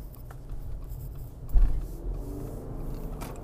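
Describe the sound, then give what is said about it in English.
A car engine rumbles low and steady at idle in traffic behind a pallet truck, then a single dull clunk and shudder comes about halfway through as the car's auto-stop cuts the motor out, leaving a quieter hum behind. “I hate how this car turns off.”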